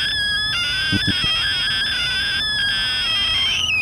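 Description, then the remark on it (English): A reed warbler sings a continuous, steady stream of high, wavering whistled notes with an electronic, synthesizer-like quality. A couple of soft low thumps occur early on, and no one speaks. “Particular species of bird. The reed warbler.”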